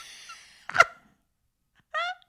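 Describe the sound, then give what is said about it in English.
A single sharp sneeze into a microphone bursts out after a breathy inhale, loud and abrupt, followed a moment later by a brief, high voiced sound like a startled vocal afterthought, a sneeze laugh. “And you sneezed all over the microphone.”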